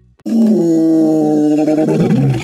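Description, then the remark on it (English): A single loud lion roar bursts in after a brief silence and holds for about two seconds, deep and rumbling with a rough, growling edge as it trails off. “This is the so-called fight-or-flight reaction, the same response activated by our ancestors' autonomic nervous system when they met a lion in the savannah.”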